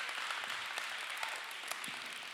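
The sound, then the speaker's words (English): An audience of women claps steadily, a dense wash of many hands with a few sharper claps standing out, holding at an even loudness throughout, with no voices over it. “That was only the ladies clapping at the end.”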